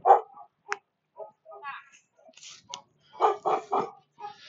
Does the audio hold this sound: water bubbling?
no